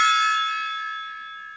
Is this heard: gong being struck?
yes